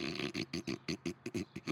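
A bear grumbles and growls in a quick series of rough, throaty pulses, fairly loud, with a snore-like rhythm and no talking.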